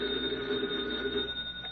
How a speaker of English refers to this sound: Meanwhile, the nearby FBI field office, Special Agent Taylor, is returning from the file room when his phone rings.